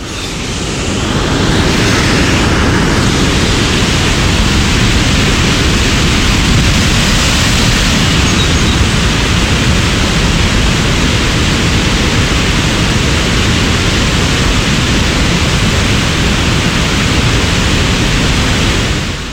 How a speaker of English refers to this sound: But the sound of the falls is on all sides. Yes. It's not deafening, but it's loud. It's loud, and it sort of is just a constant kind of white noise yeah. rush.